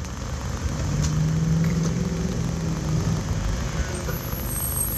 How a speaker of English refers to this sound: You like the sound of cars passing by, because that's what you're going to get right now until she opens the door.